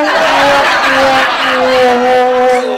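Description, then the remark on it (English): A car with a broken steering column goes out of control, its tires squealing in a long, loud, continuous skid lasting a few seconds, wavering slightly in pitch over a rough engine and road roar. “That steering column was kaput. I knew that car would go out of control.”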